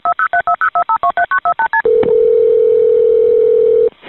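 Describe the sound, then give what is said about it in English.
A telephone line during a 911 call: about a dozen quick keypad dialing beeps in a fast, even rhythm, then a single loud, steady mid-pitched tone that holds for around two seconds before cutting off. “This is a 911 call.”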